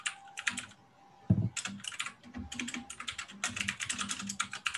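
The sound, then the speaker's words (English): Rapid, clattering computer keyboard typing, fairly loud, with bursts of keystrokes and brief pauses, plus a low thump partway through; no voices. “Your keyboard is so loud, by the way.”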